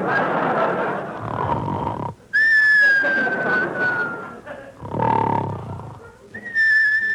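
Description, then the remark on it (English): A sleeping doctor snores loudly and raspingly, alternating with high, thin whistles on the exhale, a steady rhythm of rough inhale then sliding whistle, repeated about three times. “Come the whistles.”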